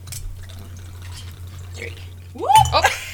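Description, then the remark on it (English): Liquor, including triple sec, pours from two bottles at once into a glass, a brief burst of gurgling with a rising pitch as it fills, over a low steady hum and faint background voices. “Now, my favorite thing to do, I don't know if you're going to be able to see this, but I like double fisting.”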